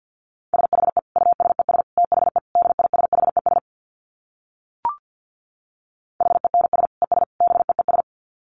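Rapid Morse code at 50 words per minute in a single steady mid-pitched tone, keyed in fast dots and dashes over two bursts separated by a pause with one brief click. No voices.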